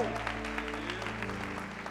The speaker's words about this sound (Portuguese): Dê um brado ao Senhor e aplaudo neste lugar e adore. Oh! Oh!